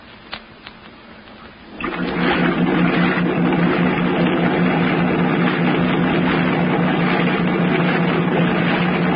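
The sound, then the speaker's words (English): After a brief quiet start with a few faint clicks, a boat engine roars up and keeps running as a loud, steady, rumbling drone with water churning underneath, as the boat heads for the mainland to tie up alongside an old piling. “Run the boat up alongside that old piling and tie her up”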